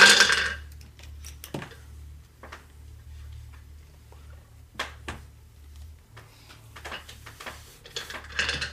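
Twelve-sided dice clatter and tick as they are gathered and rolled onto a hard surface for a damage roll in a tabletop game, with sharp scattered clicks and a louder rattle near the end over a low steady hum.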